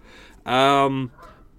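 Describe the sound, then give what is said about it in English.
A single loud, drawn-out goose honk outside, harsh and nasal, lasting over half a second, with quieter murmuring sounds just before and after. “Goose outside making an absolute racket.”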